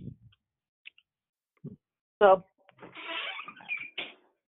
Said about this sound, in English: Close my door.